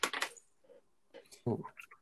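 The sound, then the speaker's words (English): A twenty-sided die (d20) clatters and tumbles across a hard tabletop, a rapid burst of clicks, then a few scattered taps as it settles, with a brief voice sound near the end; the game master rolls it for a player's dexterity check during a tabletop role-playing game. “Just do a d20. Okay, sure. I'll roll for you as the DM.”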